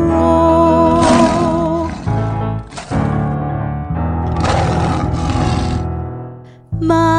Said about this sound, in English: My imaginary friend draws a circle on the floor, which turns into a lion that can roar, roar.